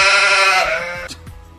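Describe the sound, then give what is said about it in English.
A single loud sheep bleat with a strong wavering harmonic tone lasts about half a second, then trails off into faint background noise with a few soft thumps. “The sheep eventually finds its way out of the office through the same window it used for its entrance.”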